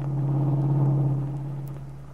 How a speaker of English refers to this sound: Paul devoted himself to driving the car through the heavy city traffic